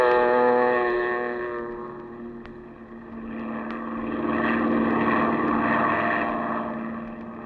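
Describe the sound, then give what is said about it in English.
A small propeller seaplane's engine drones steadily as it skims across a bay headed toward the Gulf, its buzzing harmonics dipping briefly then swelling again over a rushing wash of wind and water, with no voices. “Then you wade out to the plane, and a few minutes later, you're skimming across the bay, headed toward the Gulf.”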